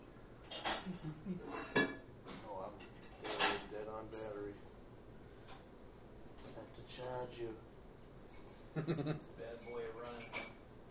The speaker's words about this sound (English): The dishwasher. Oh, please. Too much background noise.